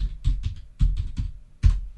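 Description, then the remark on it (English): Several distinct keystrokes clack on a computer keyboard in a quick, slightly uneven rhythm, moderately loud, with no voices, as someone types "notepad" into the Start > Run box on a PC. “Then on the PC, go start, run and type in notepad.”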